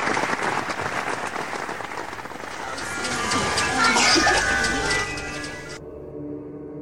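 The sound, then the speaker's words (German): A theater audience applauds steadily after a staged performance, many hands clapping in a dense, continuous patter that swells slightly toward the middle before fading a little, with faint crowd noise mixed in. “Das Publikum dankt es.”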